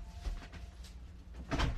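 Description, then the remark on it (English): A basement door is pushed shut, with some brief shuffling and creaking before it closes with a soft, low thud near the end. No one speaks. “But I need everybody to hold on for a second because I got to shut the door to the basement.”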